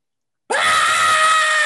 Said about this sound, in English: Three, you start to scream.